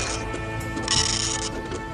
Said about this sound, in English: I mean, obviously, I have a dot matrix printer here.